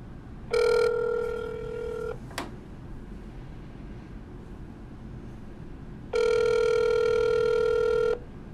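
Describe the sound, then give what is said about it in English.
A telephone rings out twice on the line while calling a pizza place in Petersburg, each ring a steady, buzzing tone lasting about two seconds, separated by a long pause with a brief click after the first ring. “I'll call them tomorrow.”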